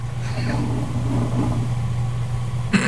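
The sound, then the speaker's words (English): A coffee maker brewing gives off a steady, low mechanical hum with faint bubbling textures, ending in a sudden short burst of hissing noise. “That's the coffee maker, I said.”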